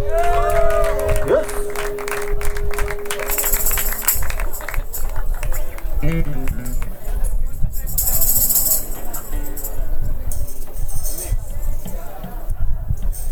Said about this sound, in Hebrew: איזה אדירים נתנו להם כפיים?